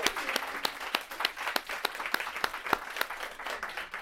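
An audience applauds in a steady, dense round of clapping, with many overlapping sharp claps at a fairly constant moderate loudness for several seconds and no voices.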